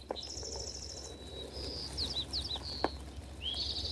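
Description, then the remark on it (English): Several birds sing and chirp in a steady, overlapping morning chorus, with rapid trills and high whistled notes over soft outdoor ambience and no voices. “impact the songs of the birds have on our heart.”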